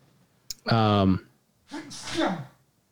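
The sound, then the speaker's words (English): A single loud sneeze: a sharp catch of breath, a strongly voiced drawn-out burst, then a second, softer and breathier release, with no other sounds around it. “Bless you.”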